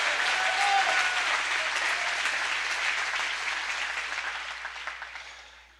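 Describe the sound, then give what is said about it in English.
An audience at a religious service applauds with dense, sustained clapping that starts loud and gradually tapers off over several seconds, with no talking. “Everybody clap your hands if you believe in a happy God.”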